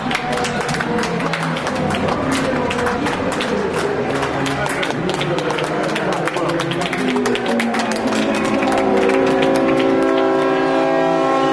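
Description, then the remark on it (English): Loud cheering and clapping from a crowd fill the scene as Audi wins the 79th running of Le Mans in 2011, then several Audi team trucks sound long, steady horns together over the noise, holding sustained droning tones through the final seconds. “The Audi trucks are sounding the horns.”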